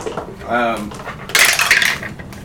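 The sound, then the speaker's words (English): A short voiced murmur, then a bright clatter of dice tumbling and rattling across a hard tabletop for about half a second before settling, rolled in a tabletop role-playing game; the roll comes up 19. “It's a game where you roll dice, and if your numbers are good, then you win.”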